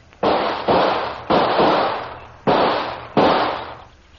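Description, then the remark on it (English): Five loud gunshots, fired at leaves where something was seen moving, ring out in an uneven sequence, each a sharp crack followed by a rumbling decay, with two quick pairs and a longer gap in the middle. No one speaks. “Come out from those leaves, whoever you are, or I'll shoot.”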